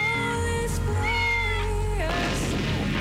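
A cat lets out a long, drawn-out meow that wavers and then drops in pitch before breaking off, loud, over a low rumbling background with no talking.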